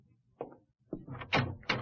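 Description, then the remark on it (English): A door opens: a soft knock of the latch, then a few rising, scraping clunks as it swings, with no one speaking. “I walked to the door.”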